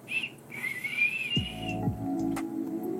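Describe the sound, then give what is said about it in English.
A brief high whistle, then a longer, wavering high-pitched whistle, joined by a lower buzzy tone that swoops downward and holds steady to the end. No one speaks. “You gotta have the whistle.”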